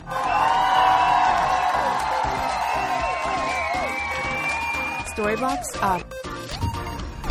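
A crowd applauds and cheers loudly and steadily for several seconds, with high, sustained whoops riding over the clapping and a few sliding shouts near the end.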